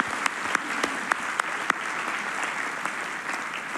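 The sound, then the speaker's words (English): An audience claps hands together in agreement after a prayer. The applause is a dense, steady wash, with a few sharper individual claps standing out early on before it settles into an even patter. “Can we say amen and clap our hands in agreement?”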